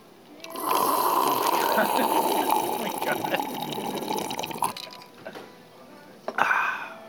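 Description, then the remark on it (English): Ice water pours steadily into a glass in a restaurant for about four seconds, a continuous splashing fill with faint clinks, then trails off into quiet with a brief knock near the end. “Good ice water.”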